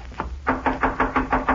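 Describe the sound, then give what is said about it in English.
Rapid, steady knocking on a wooden door of a house where nobody seems to be home: a couple of soft raps, then six firm, evenly spaced knocks in quick succession, with no voices. “Ought to be somebody here, but I don't hear them coming to the door. Well, let me try.”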